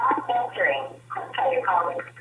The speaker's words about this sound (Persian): صدای شما میاد ولی خیلی آشفته و خیلی خوبه. چرا اینقدر پارازیت و سرصداهای اضافی هست اونجا؟ نمیدونم این یه گوشی من هست، میخواستم با دو تا گوشی بگیرم.